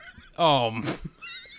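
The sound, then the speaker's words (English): A person imitates a horse whinny: one loud, wavering vocal neigh that slides downward and ends in a breathy snort, all within about a second. “The goddamn horse detective?”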